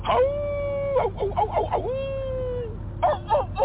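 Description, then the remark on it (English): A voice imitates a rooster's crow, with two long drawn-out cock-a-doodle-doo calls separated by choppy clucking bursts, then a short burst of clucking at the end, loud. “That's a rooster. Give me a wolf.”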